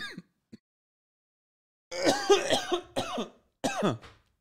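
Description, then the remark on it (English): A bout of harsh, sputtering coughs after choking on saliva: a short catch, then three loud ragged bursts with brief pauses between, no talking. “I just swallowed my own spit, sorry.”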